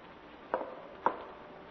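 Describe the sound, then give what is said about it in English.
Limping footsteps of a lame man in an attic: two heavy, dull thuds about half a second apart, standing alone over a faint steady hiss. “Coming from the attic. Footsteps of a lame man.”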